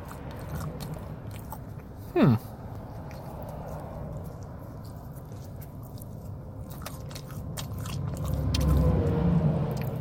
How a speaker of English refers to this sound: Do you like chewing with the mouth open or not? Like, I know it's not polite, but it adds to the sound of the episode, right?